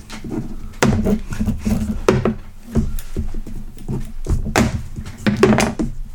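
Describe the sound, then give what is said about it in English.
Dice clatter and tumble across a wooden tabletop in repeated bursts during a competitive dice-rolling game, a busy run of sharp clicks and hollow thunks that rises and settles several times, with no one speaking. “Competitive dice rolling.”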